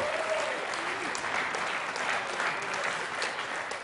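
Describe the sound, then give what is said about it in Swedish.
A church audience applauds steadily, cheering and thanking the Lord, a dense wash of clapping with scattered cheers rising through it, sustained at an even level for the full few seconds. “Det är nu vi jublar och tackar Herren.”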